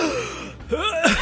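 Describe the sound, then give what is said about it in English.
A person suddenly sits up in a desert, sweaty and disoriented, gasping for breath in short, ragged pulls, a few quick breathy inhales with a rasp of voice, fairly loud, with no words spoken. “sits up in frame, gasping for breath, sweaty, disoriented, not really sure why he's in the middle of the desert.”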